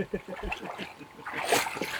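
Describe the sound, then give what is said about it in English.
A short burst of water splashing as something is dipped in water, a hissy wash of sound lasting under a second, following and partly overlapping faint murmured voices. “Dip them in the water.”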